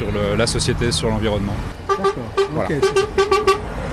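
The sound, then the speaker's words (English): Car horns blare amid road traffic as passing drivers honk in support of protesting farmers, with a longer honk early on, then a quick run of short, repeated beeps, while voices carry underneath. “Some drivers honk their horns in support as they drive by, even though they've been stuck in traffic jams caused by the farmers.”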